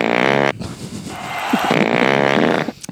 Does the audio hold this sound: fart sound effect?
yes